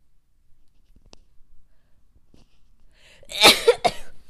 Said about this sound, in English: I do have to sneeze. I do.